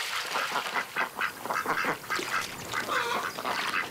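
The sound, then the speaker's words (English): Several ducks quack in a busy, overlapping chorus, the nasal calls coming in quick irregular bursts at steady volume, with no one speaking, as ducks skid to a water landing on a river. “I trailed my hand in the water and looked at the ducks skidding to a water landing.”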